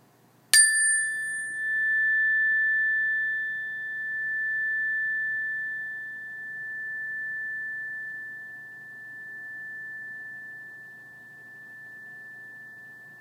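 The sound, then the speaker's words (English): A single meditation chime is struck once during a breathing exercise, ringing out with a bright metallic attack and then a long, pure tone that slowly fades over more than ten seconds. “so now we have this chime that makes noise, and what I want you to do is, as you're listening to the breath, also listen to the chime. Only raise your hand when you don't hear the chime anymore.”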